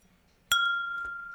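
Glasses clink together in a toast: one bright, sharp strike followed by a long ringing tone that slowly fades, with a softer second touch shortly after, clear over quiet background.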